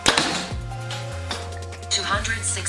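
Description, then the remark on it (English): A Bear Archery Perception compound bow (29-inch draw length, 69 pounds) fires a heavyweight 687-grain arrow with a sharp snap and thump as the arrow releases, followed by a low hum and a couple of fainter mechanical clicks. “And then now our heavyweight 687 grain arrow.”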